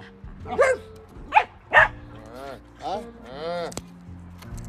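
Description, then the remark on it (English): Two dogs, one named Spock, bark in three sharp, fairly loud bursts, followed by higher whining, yelping calls, with a low steady hum in the background. “I heard you, both of you were woof woofing.”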